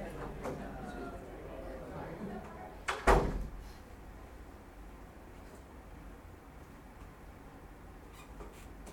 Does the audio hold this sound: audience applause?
no